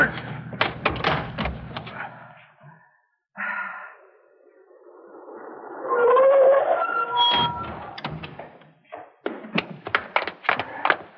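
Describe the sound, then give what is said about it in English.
A car door clunks open with rattling knocks, a rustling, shifting pause follows, then the door slams shut with a few sharp thuds. “Now, open the door.”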